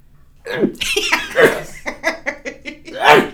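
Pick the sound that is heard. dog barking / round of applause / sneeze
sneeze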